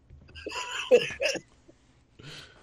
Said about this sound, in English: God. Damn, fucking death farts.